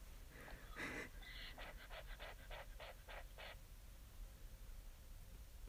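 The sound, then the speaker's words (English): Heavy, rapid breathing puffs straight into a microphone, a rhythmic series of about ten short breathy bursts over low rumble, loud, then fading into steady background hiss. “you're breathing right into your mic.”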